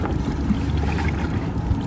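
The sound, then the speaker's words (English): Tandem kayak paddling with two people on Lady Bird Lake in Austin, in cold water: a steady, fairly loud low wash of water and wind buffeting the microphone, continuous for the whole stretch with no voices. “If you've never been kayaking, it's essentially a water activity that involves a usually colorful plastic boat. You can do single or tandem. Right now we're doing tandem.”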